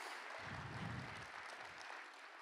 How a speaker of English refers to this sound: Worship team, you guys can come out. That means we're finished. You guys can clap. That's good. We're done.